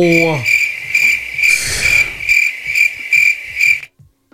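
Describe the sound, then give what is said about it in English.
A crickets chirping sound effect: a steady, continuous, shrill pulsing trill, loud, with a faint low rumble beneath; the chorus cuts off abruptly just before the end. “So if you're a cricket, you can go out to our YouTube page.”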